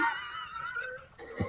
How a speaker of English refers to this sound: But first, maybe clear your throat again.